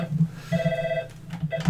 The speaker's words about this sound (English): Oh, well. It'd be the phone ringing.